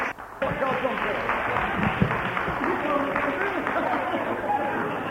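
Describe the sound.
A crowd breaks into sustained applause after a brief quiet start, a dense wash of many hands clapping at once, with murmured voices mixed in underneath, as a church audience applauds a couple coming up to the platform to give a testimony.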